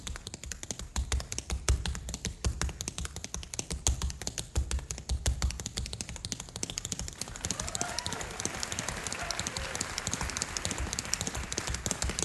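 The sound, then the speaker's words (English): Rapid, dense dance footwork taps on a hard floor in a barn, practising to see how fast it can go, a fast clattering rhythm that is busiest in the first half and then blurs into a looser, scuffing patter, fairly loud. “So I'd go in our barn and I'd shut the door and I'd be by myself in my own world, drilling, working out ideas. One time I was seeing how fast I could go.”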